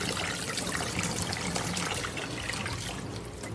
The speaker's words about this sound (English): Let me wash them. Podcasting is so funny because, like, ooh, too much water pressure.